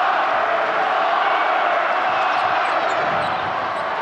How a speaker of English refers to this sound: When James Harden goes to the line, the Rockets win. Crowd chanting flopper.